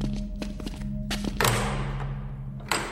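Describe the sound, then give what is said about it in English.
Several small clicks and rattles, like a latch being worked, lead into a solid thunk as a door into a king's castle swings open, followed by a soft, airy rush that fades, then one more light knock. “And now we just open the door and go see the king?”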